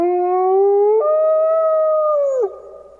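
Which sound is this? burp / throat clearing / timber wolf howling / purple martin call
timber wolf howling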